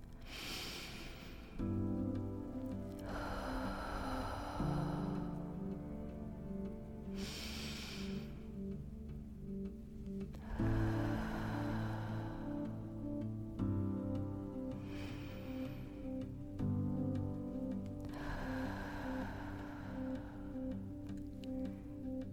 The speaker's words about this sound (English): Let's bring this practice to a close with three long inhales and exhales together.